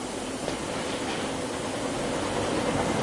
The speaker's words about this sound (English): West, where are you? On a train.